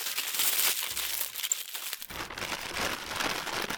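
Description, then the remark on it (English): Continuous crinkling and rustling of paper being crumpled and folded as a taco is wrapped in paper and put in a brown paper bag, a busy crackly texture lasting several seconds with a brief pause midway, no voices. “And then we wrap it up in paper so you can take it to Floosville in a brown paper bag, like this.”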